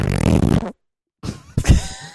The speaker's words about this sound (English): What was that? Morgan Freeman narrates a fart.